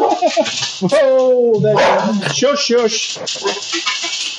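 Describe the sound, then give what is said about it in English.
Dogs bark, yip and whine excitedly at foxes and badgers running around the back of a house, in a continuous burst of overlapping calls, with a voice mixed in underneath. “We've just got foxes and badgers running around the back of our house, and the dogs are going crazy.”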